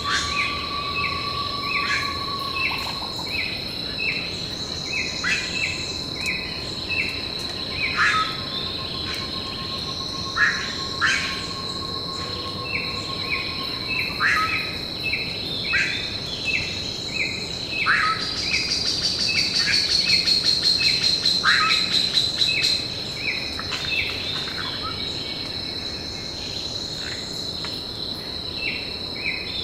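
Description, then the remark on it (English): A dense tropical forest dawn chorus recorded at the falls on the border of Brazil and Argentina: steady high insect drones and pulsing cricket-like trills fill the air, with scattered bird calls and whistles mixed in, no voices present. “Dan Grossman and I recorded this dawn chorus when we visited the falls a few years ago.”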